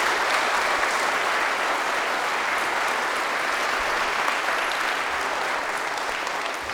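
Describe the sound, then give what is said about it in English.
An audience applauds a youth mission team steadily, a dense, even wash of many hands clapping that holds at full strength for several seconds, with no voices rising above it. “But could you all give these youngsters a round of applause?”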